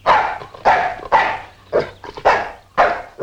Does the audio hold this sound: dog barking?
yes